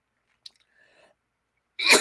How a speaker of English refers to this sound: My eyes are even watering. I'm coughing so hard.